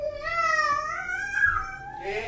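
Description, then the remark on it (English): A toddler babbles and fusses with a drawn-out, whiny vocal wail, its pitch wavering up and down for about two seconds, fairly loud, ending in a brief breathy burst. “This is what it's like to live with a toddler.”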